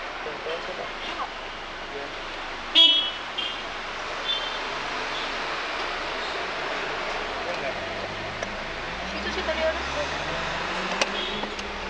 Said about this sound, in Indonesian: By the way, kita ini lagi di jalan tol. Jadi sesi interviewnya, sesi ngobrolnya ini di dalam mobil.